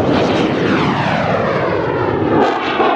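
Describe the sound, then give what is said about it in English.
A flat-earther's steam-powered rocket launches with him aboard, lofting him 1,875 feet up into the Mojave Desert sky. A loud, steady roaring rush fills the whole three seconds, its tone sliding gradually downward as it goes. No one speaks. “That was actual audio of his steam-powered rocket, and no, it didn't blow up.”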